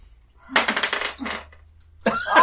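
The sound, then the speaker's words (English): Dice clatter and tumble across a table in a quick burst of hard, bright clicks lasting about a second, rolled for a luck check in a game, followed after a brief pause by another sharp rattle. “Well, they always roll those super well.”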